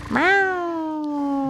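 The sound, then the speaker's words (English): A person imitates a cat's meow with one long, drawn-out call that rises quickly and then holds, sliding slowly downward, clear with no other sounds. “Wait, what was that meow you did a long time ago?”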